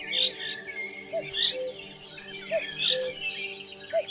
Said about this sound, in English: Is that the first cuckoo of spring?